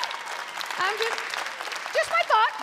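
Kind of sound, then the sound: crowd, audience applause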